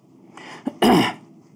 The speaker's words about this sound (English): he coughs a couple times, and you can see like there's a thin red line starts to grow out of the left corner of his mouth.